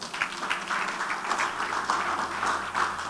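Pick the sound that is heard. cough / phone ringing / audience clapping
audience clapping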